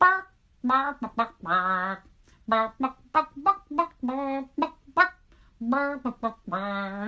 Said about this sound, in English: A cockerel. Yes. Some clucks. Some clucking.